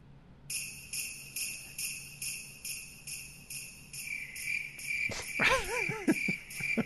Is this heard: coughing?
no